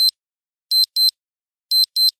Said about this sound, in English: No, I don't. But, I hear my alarm clock.